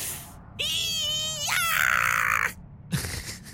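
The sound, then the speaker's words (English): A loud, drawn-out battle cry yell lasting about two seconds, its pitch jumping higher partway through, followed by a pause and a brief rough vocal burst. “Can we have like a battle cry when we run onto the door?”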